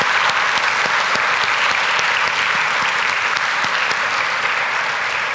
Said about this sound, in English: So let's give all of the children and leaders another round of applause this morning.